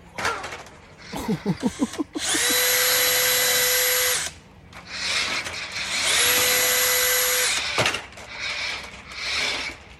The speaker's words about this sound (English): This is me trying to do the drilling and him coming up with different remote control cars and things that he wants me to drive instead of finishing the machine.